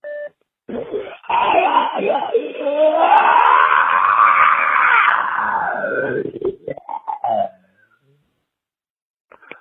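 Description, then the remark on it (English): A single long scream, played back from a caller's voicemail, swells and arches in pitch for several seconds, thin and tinny like a phone recording, then breaks into a few short choppy vocal bursts before going quiet. “There's my scream.”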